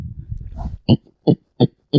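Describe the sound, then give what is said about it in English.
A person imitates a pig with four short, evenly spaced grunting oinks, fairly loud, after a brief low rumbling breathy sound at the start. “That does sound like a pig.”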